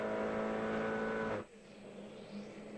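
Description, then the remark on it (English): Loud race car engines roar with a dense, buzzing drone for about a second and a half at the start of a race, as car number 81, the Bimmer World BMW, moves into the lead ahead of the pole-sitting Mini, car number 37; then the sound drops away abruptly into a quieter engine hum. “He's moving up into the lead in car number 81. That is the Bimmer World BMW, ahead of the pole sitter, Nate Nuremberg, mini car number 37.”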